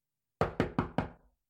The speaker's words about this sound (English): she came knocking on that closet door.